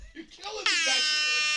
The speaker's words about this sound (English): Turn that thing off. It's my little rap air horn.